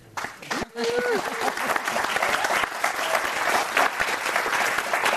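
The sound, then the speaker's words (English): An audience at a program for queer trans API people breaks into loud, sustained applause for its speakers and itself: dense overlapping claps with scattered cheers and voices mixed in, beginning after a brief quieter moment and continuing steadily to the end. “I selfishly also would like for you to clap again because I think we look and feel amazing and just how beautiful we are as queer trans API people.”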